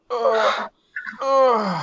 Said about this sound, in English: Don't you dare yawn